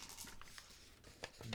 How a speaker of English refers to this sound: You didn't need to roll those dice on the table. You rolled them within the glass, and then you just read them.